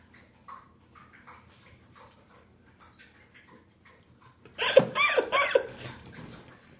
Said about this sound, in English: Listen. She's not snoring. Yeah, she's just thirsty. I want to see how long she'll drink water.